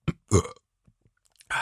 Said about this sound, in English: Hang on. I'm going to burp again.